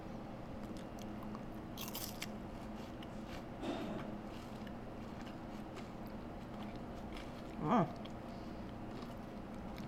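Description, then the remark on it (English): Someone bites into a piece broken off a wasabi-flavored Kit Kat chocolate wafer bar: a few crisp, brittle crunches with quiet pauses between them, the loudest snap coming near the end. No one speaks. “I'm going to break off one piece of the Kit Kat bar.”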